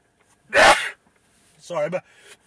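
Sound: loud sneeze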